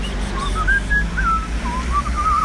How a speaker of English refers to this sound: A new one from today, whistling. Which is, I really want to do whistling. It'd be quite a quick one. I like whistling.